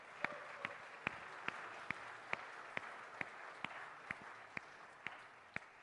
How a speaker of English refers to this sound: And I told them the longer you clap, the longer they have to stand.